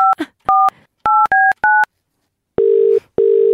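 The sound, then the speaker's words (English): Five quick keypad tones as a phone number is punched in, followed by two long, steady ringing tones with a pause between, clear with no talking. “So this morning, yes, I want to ring it.”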